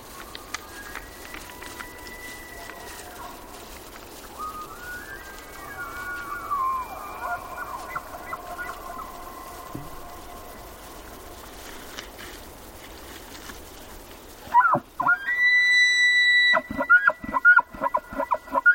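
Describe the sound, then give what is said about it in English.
Two male elk bugle across a high meadow on an autumn evening in Yellowstone National Park, with long, high whistling calls rising and sliding over one another, then a louder bugle at the end that breaks into a rhythmic series of grunting chuckles. “Jonathan Storm recorded these two male elk. Their competing testosterone-driven calls for female companions echo across a high meadow on an autumn evening in Yellowstone National Park.”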